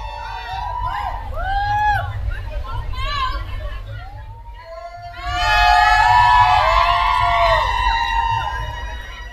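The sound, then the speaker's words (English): A live crowd cheers and shouts, scattered whoops over a steady roar that swells sharply louder midway and stays loud to the end. “I need you guys to make some noise next to us.”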